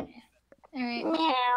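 A person imitates a cat's meow with one long, loud, rising-and-falling cry, after a few faint soft sounds.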